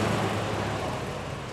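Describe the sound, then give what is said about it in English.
The engine of a chauffeur-driven Rolls-Royce, full of passengers, roars steadily as the car races away, a fairly loud rumble with broad road and motor noise that holds even for a second and a half. “The Rolls-Royce raced off.”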